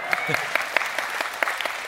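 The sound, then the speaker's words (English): A church audience breaks into applause and cheering: dense, steady clapping with a few sharper claps standing out, fairly loud throughout, with a murmur of voices mixed in underneath. “Yes, we could cheer.”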